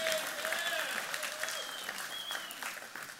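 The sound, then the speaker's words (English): A room full of people applauding, a dense steady patter of many hands clapping at once, with faint voices and a few cheers mixed into the crowd noise. “You can clap”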